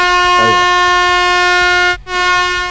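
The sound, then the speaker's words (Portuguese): An air horn sound effect, played on a sports talk show when a panelist goes over the 30-second answer limit, blares loudly and steadily with a harsh, buzzy tone, cuts out for a split second near the end, then resumes. Faint voices murmur beneath it. “eu acho que você pode até soltar outra buzina aí”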